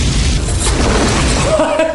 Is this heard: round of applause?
no